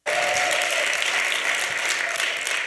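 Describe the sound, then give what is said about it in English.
A crowd claps steadily, a dense, even wash of applause that holds strong without fading for a couple of seconds, with a faint whoop or vocal note briefly audible near the start. “Give it up for Lainey.”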